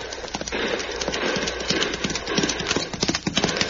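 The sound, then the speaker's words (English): The hooves of a fleeing rider's fast horse pound in a galloping rhythm, loud, with a steady run of sharp clip-clop beats throughout and a bit of rustling noise underneath. “Madre mía, that's a fast horse that hombre rides, Cisco.”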